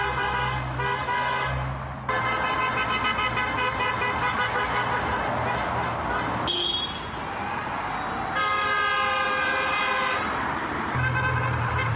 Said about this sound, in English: Everybody's driving by honking. There's 3 minutes of this.